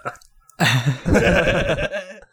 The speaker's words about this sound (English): All right. I'm putting a moratorium on burping during the show, please. Thank you. Let's not do that.